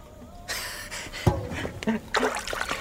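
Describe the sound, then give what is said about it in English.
Water splashes and trickles, scooped and tossed from a bath in several uneven bursts as someone mockingly blesses with it, with a heavier slosh partway through and faint vocal sounds around it. “I bless you with this water.”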